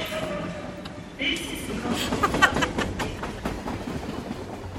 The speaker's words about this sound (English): And if you're fans of trains, then I'll just leave you with a little bit of train station ambience. Clapham Junction. Oh, once was... Oh, lovely trains.